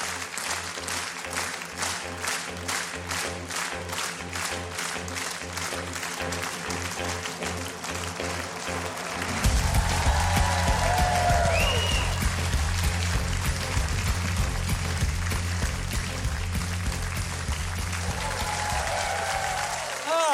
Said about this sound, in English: All right, here we go. Yeah, that means clap along.